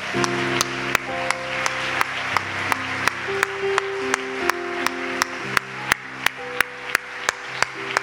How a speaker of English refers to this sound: Give the Lord one more good hand clap of praise.